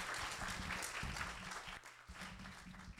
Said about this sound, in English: Can we give one more round of applause